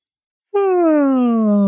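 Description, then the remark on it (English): A narrator reading a story imitates the yawn of Templeton the rat: one long, drawn-out vocal groan that starts higher and slowly slides downward in pitch, steady and fairly loud after a brief silence, with a faint breathy hiss at the onset. “The rat yawned.”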